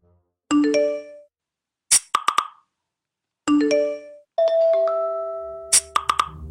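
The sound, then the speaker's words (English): Several short electronic phone notification chimes play one after another, bright tonal pings and blips with ringing overtones, some overlapping, loud with brief silences between them. “I feel beset on all sides and anxious, like I need to check my phone.”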